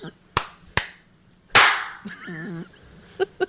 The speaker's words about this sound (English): I feel like you guys didn't do 01. I did do 01. I clapped at the top of the minute, halfway to 1, and at 1.